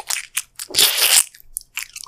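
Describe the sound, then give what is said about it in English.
Rapid, crunchy chewing: a quick string of bright, crackly bites with one longer grinding crunch in the middle, fairly loud and with no talking. “Stop eating so fast you're gonna choke.”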